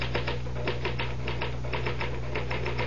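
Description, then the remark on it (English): Rapid mechanical typewriter keystrokes clatter in a steady, busy rhythm, fairly loud, over a low constant hum with no voices. “Well, the truth is that the typewriter, or rather, Mr. Gann, does all the brain work.”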